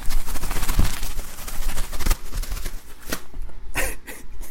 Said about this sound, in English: Here's some McDonald's napkins.